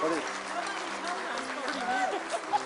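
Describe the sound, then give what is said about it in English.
A large crowd stands and claps steadily in a continuous wash of applause to thank a group of people for what they've done, with sustained musical tones and scattered voices mixed in underneath. “Let's just stand up and give them a round of applause for what they've done.”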